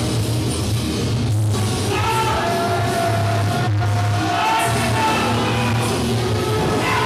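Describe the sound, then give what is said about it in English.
A large crowd of Flophouse fans boos loudly and steadily after the kickoff match, a dense roar of low, drawn-out voices with scattered yells rising over it, continuing without a break for the whole stretch. “The crowd is just booing on hardcore.”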